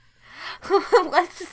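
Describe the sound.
A breathy intake followed by a quick run of three or four dramatic, voiced gasps, fairly loud, like someone theatrically gasping in mock shock.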